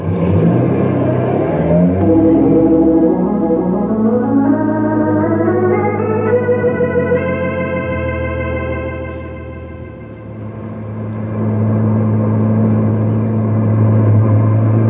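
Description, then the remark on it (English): A car engine revs hard and loud, its pitch climbing steadily as it accelerates away, easing briefly into a lower drone before surging again, with no voices. “it's all right with me if you keep that heavy foot off the gas”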